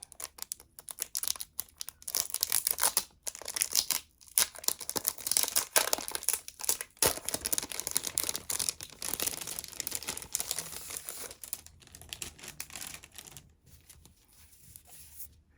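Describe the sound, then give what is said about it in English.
Steady rustling and crinkling of sheets of to and from gift stickers being flipped through while picking one for gift wrapping, with brief quiet gaps between bursts of papery handling. No one speaks. “Now we have to pick the perfect sticker.”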